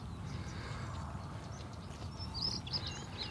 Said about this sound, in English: listen to those stone chats.